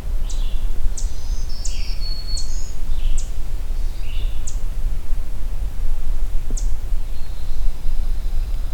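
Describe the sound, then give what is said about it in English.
A pine warbler sings a series of thin, high chirping notes for several seconds, then adds one more note after a pause, fairly faint over steady outdoor hiss and rustle. “Decided to move, so it's now behind me again in a different direction.”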